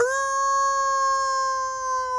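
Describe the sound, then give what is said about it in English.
A lone wolf howl sound effect rings out as one long, steady, clear tone that holds for about two seconds, loud with no voices over it. “Just to hear the sounder, I'll be the lone wolf and take the 49ers.”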